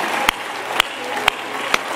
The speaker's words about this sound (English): Come on, somebody, clap your hands unto the Lord and give God glory and praise in this house.